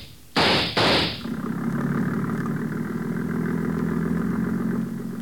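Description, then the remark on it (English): Two loud, rushing bursts give way to a steady, rumbling speedboat engine that drones on evenly with a low, buzzing hum as the boat pulls away from a dock and heads downriver. No voices are heard. “There he goes, into the speedboat at the dock.”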